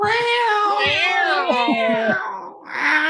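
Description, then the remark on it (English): Loud cat-fight yowling: continuous wavering, rising and falling howls that overlap for about three seconds, with a brief dip before a final shrill wail. “Cat fight!”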